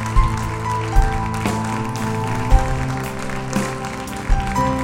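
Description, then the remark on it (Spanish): A crowd claps steadily in response to a call for a loud round of applause, a dense crackling wash running under loud, sustained musical chords, with a few heavier thumps rising every second or so. “¿Alguien puede dar un aplauso fuerte que se oiga?”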